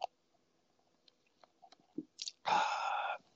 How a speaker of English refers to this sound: I'm drinking some Cavarsier. Sipping some Cavarsier just to get in the mood a little bit. Setting the tone.